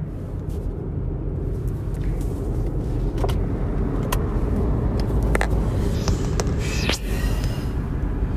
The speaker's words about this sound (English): You're going to hear the sound of the window.